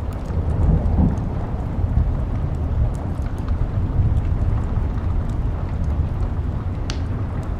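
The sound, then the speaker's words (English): Steady, heavy rain pours down in a dense wash of noise while deep thunder rumbles low and continuous beneath it, enveloping, with no voices. “Think about what it smells like during a rainstorm.”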